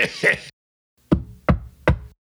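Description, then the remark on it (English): Three firm knocks on a door in a steady, even rhythm, fairly loud, following a brief snatch of voice that cuts off just before. “would you mind getting the door?”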